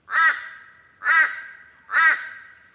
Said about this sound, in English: To me, if anything sounds a bit like a duck, it's going to be a Teresian crow.